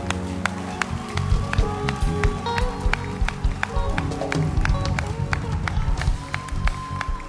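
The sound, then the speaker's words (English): An audience claps in a steady, fast rhythm, the sharp claps ringing out loudly over singing voices and a low musical hum. “Clap be louder.”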